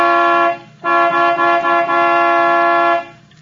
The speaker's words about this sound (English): All right. I'll give it the horn. It don't budge.